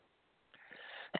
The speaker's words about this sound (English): Because I need to cough.